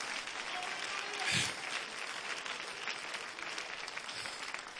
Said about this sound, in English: Come on, clap your hands. Give God voice in this place.